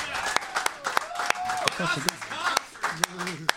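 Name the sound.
audience clapping and applause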